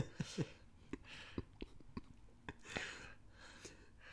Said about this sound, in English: Your breathing is making me uncomfortable. Sorry, I have asthma and allergies.